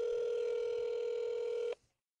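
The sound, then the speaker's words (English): A steady electronic telephone ringing tone as a call is placed, holding evenly for under two seconds and then cutting off abruptly into quiet. No voices are present. “So we'll get Grandma, old Granddad, Nanny on the phone, and look forward to you guys hearing from them.”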